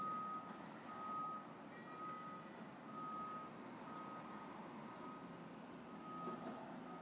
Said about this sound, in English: There's a lot of activity out there, huh? Dog, sounds like a dog. Car backing up.